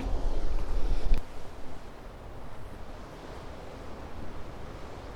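Waves wash over a boulder beach at Porthmuir Cove on an outgoing tide, with a heavy, rumbling surge at first, then a steady, hissing wash of surf. Light wind noise runs underneath, and no one speaks.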